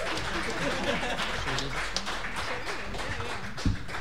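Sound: audience round of applause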